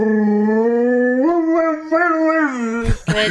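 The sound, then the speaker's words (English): A dog howls in a long, loud, wavering tone, the pitch sliding upward in a couple of rising swells as it tries to say "mama", ending with a brief noisy rustle. “Here comes the dog.”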